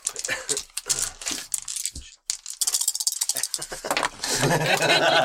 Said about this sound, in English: Dice. Apologies for the dice noises.